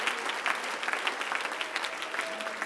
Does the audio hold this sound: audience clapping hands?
yes